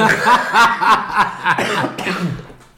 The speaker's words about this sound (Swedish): Ursäkta att jag hostar här. Jag har inte corona.